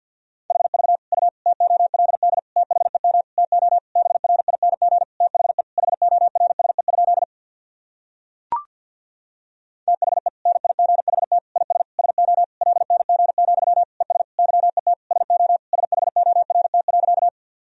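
Fast Morse code at 50 words per minute, sending practice sentences of top common words and abbreviations: a single steady mid-pitched tone keyed in rapid dots and dashes, in two long runs split by a pause with a brief click.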